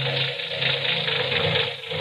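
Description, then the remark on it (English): A worn car engine with a sticking valve idles roughly and steadily, a dense mechanical drone with a faint uneven clatter, fairly loud, with no voices. “Say, that engine of yours sounds like real tired iron.”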